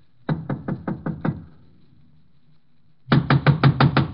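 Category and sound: impact, knocking on a door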